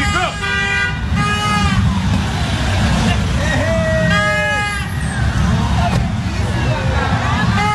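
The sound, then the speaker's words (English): A bear sitting in the back seat of an open, World Cup-themed vehicle plays a vuvuzela-like horn: several wavering, honking toots, some bending in pitch, over a constant low rumble, with a few brief gaps between blasts. “Okay, those toots you hear are not a car horn. That is a bear playing a horn.”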